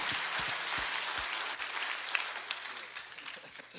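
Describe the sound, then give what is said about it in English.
A church audience at a morning service claps hands for the Lord in a dense, steady roar of applause that holds for several seconds, with scattered shouts of praise and cheers mixed into the clapping before it slowly thins. “So let's one more time give the Lord a hand clap and a shout of praise this morning.”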